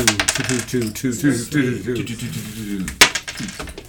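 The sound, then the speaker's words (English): Six-sided dice clatter and tumble across a hard tabletop as everyone rolls for coins, a quick series of sharp clicks ending with one louder knock, while people talk quietly underneath. “Let's roll for coins. Everybody roll D6.”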